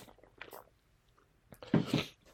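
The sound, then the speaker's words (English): Wet mouth sounds of someone sipping water: a couple of small slurps early, a pause, then a louder gulp and swallow near the end, with no talking. “Let me get a sip of water.”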